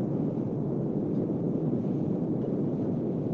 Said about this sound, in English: I hear your truck.